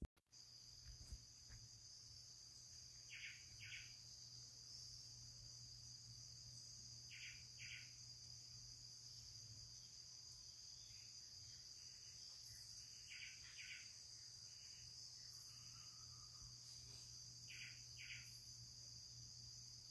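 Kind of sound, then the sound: bird, morning birdsong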